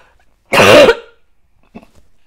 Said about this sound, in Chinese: 不想要咳嗽，可是真的好痒。